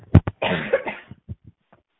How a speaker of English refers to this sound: I'm going to cough again, so I apologize.